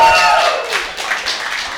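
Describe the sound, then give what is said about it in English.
A crowd at the live NextGen event at CNU applauds steadily, a dense wash of clapping with a brief whistle-like tone at the start, fairly loud throughout. “Crazy crowd here.”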